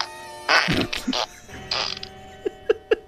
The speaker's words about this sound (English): They would put sound, the fart sound effect.